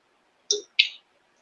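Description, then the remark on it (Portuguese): Two quick wet sipping or swallowing sounds of a sip taken from a small water bottle, a fraction of a second apart, crisp and moderately loud against near silence, with no talking. “você sabe fazer a tampa dessa garrafinha de água, que, aliás, eu vou dar um golinho aqui.”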